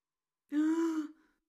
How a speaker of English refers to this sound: Your brow furrows, and instead of pushing air outward through that beautiful mouth, you gasp.